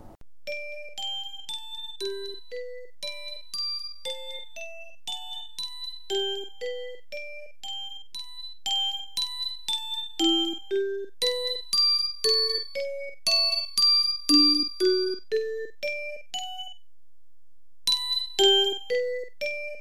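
A bright, chiming melody of bell-like tones steps up and down in a steady rhythm, played alone with no voices, pausing briefly near the end before resuming.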